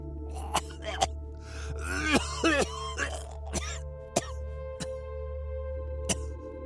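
A man coughs in sharp, harsh bursts scattered across several seconds, with strained, groaning gasps in the middle, close and fairly loud over a steady low hum.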